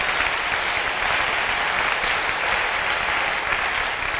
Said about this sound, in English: I want to recommend the drama ministry. I think they deserve a very good hand clap offering.